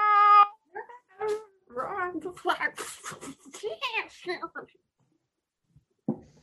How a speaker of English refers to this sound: A giant, dangerous cat meows loudly behind him.